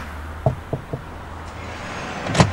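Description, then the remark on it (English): Three firm knocks in quick succession on the door of a house in a little terrace of houses on a main road in Ireland, over a low outdoor rumble. After a pause, a brief louder clatter follows. “I don't know who's living in this house, but we might knock and see if anybody knows of her or knows of the story.”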